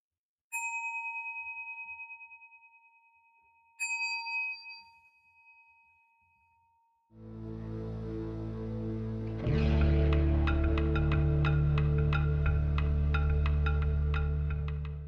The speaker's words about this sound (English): And please feel free to continue with the sitting practice, or I'm going to ring a bell. Whatever works for you to continue or not.